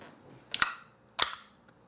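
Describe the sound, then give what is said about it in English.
A beer can from a mini fridge being cracked open: two sharp, bright snaps about half a second apart, each trailing off in a short fizzy hiss, with no voices. “That's a great crack. So this beer came from the depths of my mini fridge.”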